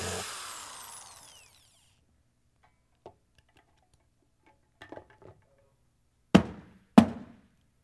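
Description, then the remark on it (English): A power drill whirs briefly and spins down, followed by a few faint clicks and then two sharp knocks, with no voices. “I need a new drill, y'all”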